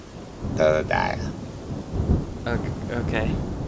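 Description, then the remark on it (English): Steady rain hisses over a low, rolling rumble of thunder, while a few short, tonal animal-like cries rise above it in two brief clusters. “She's just staring out the window, and she's watching the rain.”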